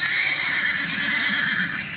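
A horse at a horse ranch in Egypt near the pyramids neighs loudly, one sustained, strained whinny lasting about two seconds with no voices over it.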